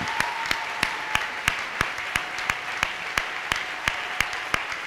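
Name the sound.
audience clapping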